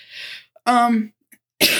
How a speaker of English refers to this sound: sorry, I am still doing a little bit of the coughing